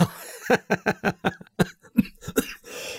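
A rapid run of harsh, close coughs, about ten bursts in quick succession, a loud, sustained coughing fit with little pause between hacks and a raspy breath at the end.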